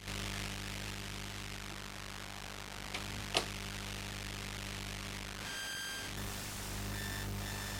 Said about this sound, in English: The electromagnetic field coming off the recorder. Is this going to work? You hear that interference? That's the mixer.